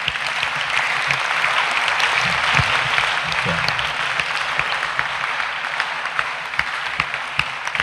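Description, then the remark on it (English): A crowd claps for Jesus during a sermon, steadily and loudly in a dense, continuous wash of applause, with a brief spoken word and some low murmuring underneath. “Somebody clap for Jesus. You see, as you are clapping, I can see people waking up from sleep.”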